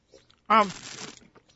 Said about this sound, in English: He's not being not polite. He is slurping for a reason and spitting for a reason. He is aerating his wine through his teeth.